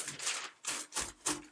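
Crisp rustling of papers being shuffled back into order, in four or so quick bursts with short pauses between them. No voices.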